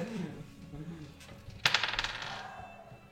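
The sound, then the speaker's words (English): Dice are tossed onto a hard surface: one sharp clack, then a quick run of bouncing rattles that fade within about a second, over a faint low background hum. “It's like, oh yeah, he hooked the dice up for you to blow on.”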